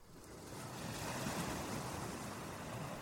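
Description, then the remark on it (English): Steady surf washes and churns around a rock surrounded by sea water, a broad roaring hiss of moving water that swells slightly and holds throughout, with a hint of wind and no voices. “I'm standing on top of a rock that is surrounded by water.”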